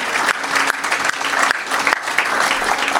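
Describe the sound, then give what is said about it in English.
An audience at a university architecture college event applauds steadily, a dense wash of many hands clapping at a fairly loud, even level with no voices rising above it. “I will clap for that.”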